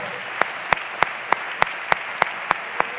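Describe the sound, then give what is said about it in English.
A church audience claps hands together during preaching in a steady, even beat, about nine sharp claps at a brisk tempo over a low background hum, with no one speaking. “It'd be nice if everybody just clapped their hands, because God's good and you know it's right.”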